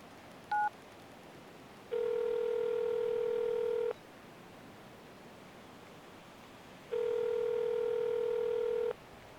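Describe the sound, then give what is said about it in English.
A single quick keypad beep, then a steady electronic ringback tone sounds twice, each ring about two seconds long with a pause between, clear and alone over faint hiss. “Come on. Pick up, pick up, pick up.”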